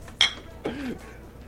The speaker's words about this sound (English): Oh, that deserved a clink of the beer bottles.